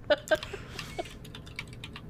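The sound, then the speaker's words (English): Quick clicking keystrokes on a computer keyboard, a few sharper taps up front followed by lighter irregular typing, moderately quiet with no talking. “Who's typing? Just mute your key. Just mute your mic when you type.”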